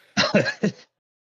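A quick run of three rough throat-clearing coughs, fairly loud, bunched into under a second and followed by silence.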